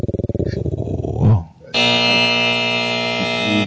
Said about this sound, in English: Damn, you had a hard ass buzzer on that. Shit. But that buzzer was hard as fuck.